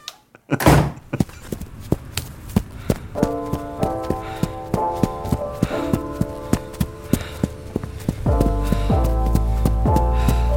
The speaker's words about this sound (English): can you do a lap of your house? Using footstep sound effects.